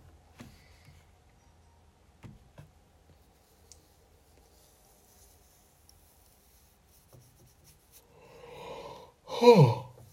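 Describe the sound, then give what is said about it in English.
A single yawn near the end: a long breathy inhale swelling up, then a voiced, drawn-out exhale that slides down in pitch. Before it, only quiet background noise and a few soft clicks. “Wow. Yawning.”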